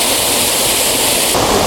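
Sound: waterfall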